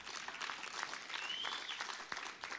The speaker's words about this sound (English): You guys go ahead and applaud anyways. We're not in the library.